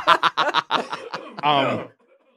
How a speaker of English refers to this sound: Just so you can't use this, I'm gonna cough real loud.